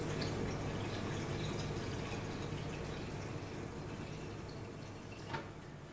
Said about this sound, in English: I'm just filling up some water because I'm taking my allergy medicine.